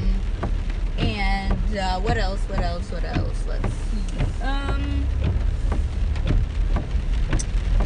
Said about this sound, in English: It is raining like crazy right now in Seattle, and I'm actually just driving to Ivan's daycare